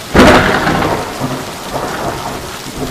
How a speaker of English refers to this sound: Ah, that gives me an idea. Maybe the thunder can be a friend to me right about now. I'm right in the middle of the storm, so there should be another thunderbolt any second now.